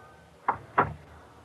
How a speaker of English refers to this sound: Sometime later, Doc closed the door to his office.